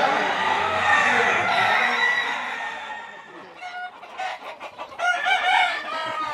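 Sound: rooster clucking and crowing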